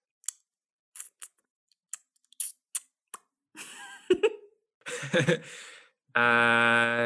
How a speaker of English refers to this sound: Honestly, I would eat them straight. Okay, like go, I would do it. Go eat one for the listeners. Like give them that ASMR crunch.